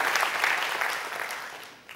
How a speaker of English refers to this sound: You can clap. You can. Come on, clap it up. You can.